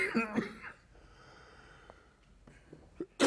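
A harsh cough bursts out at the start, followed by a quiet stretch with faint breathing, then another sharp cough right at the end.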